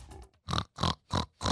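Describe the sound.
A person imitates a pig as a 'warning pig', letting out four short, nasal oinks in a steady rhythm, with brief pauses between each grunt and no talking.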